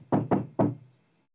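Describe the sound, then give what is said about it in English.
Three firm knocks on a door in quick succession with the last slightly delayed, clear with no voices over them. “I think the door.”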